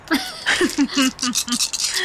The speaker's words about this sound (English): Oh, I hate that so sound. So many dice.